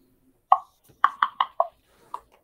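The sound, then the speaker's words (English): A die, the wrong one, is rolled onto a table during a tabletop role-playing game. It clatters across the hard surface in a string of six sharp, hollow clicks, several bouncing in quick succession before a last lone tap, with no voices. “Whoops, wrong die.”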